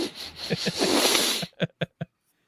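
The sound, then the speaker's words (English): A person sniffs an object to get its scent: a long, rough inhaling rush of air, then three quick, sharp sniffs in a row, followed by silence. “No, you can hold it. I just want to sniff it.”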